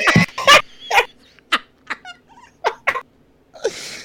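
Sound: dog whimpering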